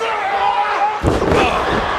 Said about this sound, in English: And also, Kane does a flying clothesline from the top rope. And when he does it, we get our third grunt of the night. Jesus. Oh, baby, a triple. Kane jumps from the top rope and makes a big noise as he comes down.